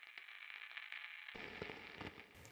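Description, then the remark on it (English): Faint, steady radio static hisses from speakers throughout, broken by scattered crackles; partway through, low muffled thumps like explosions rumble beneath the hiss. No one speaks. “However, it was so quiet and full of static, like the faint soft noise at the end of a vinyl record.”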